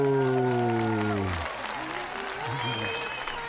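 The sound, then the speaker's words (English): Loud, dense applause fills the studio room of the Dr. Joe Show, steady clapping from many hands, with a held vocal tone over it at first and scattered cheering voices mixed in throughout. “A thunderous applause. It's a thunder and applause in the room.”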